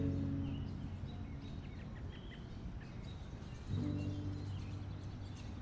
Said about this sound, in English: In the short time the city has been sleeping, birds have returned and reclaimed the town.